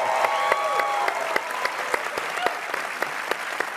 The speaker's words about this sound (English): Everybody, big clap for Chris. Hi, Chris.